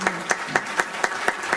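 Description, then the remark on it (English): Short burst of applause during a Broward County speech: about seven sharp, evenly spaced claps in a steady rhythm at moderate loudness, with no voices over them. “Yeah, we can clap.”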